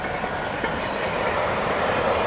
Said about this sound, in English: Wow. That's a big train with just cars on it. These are Volkswagens.